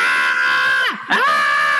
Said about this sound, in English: She's a lot. I mean, she's great, but she doesn't stop. And if you don't pay attention to her, she's gotten to the stage where she just yells at you.